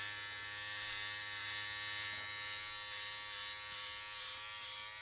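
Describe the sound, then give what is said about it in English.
Electric clippers buzz steadily for several seconds while trimming hair during a haircut, a loud, continuous motorized hum with a bright, harmonic-rich whine and no speech over it. “Take that buzzer sound.”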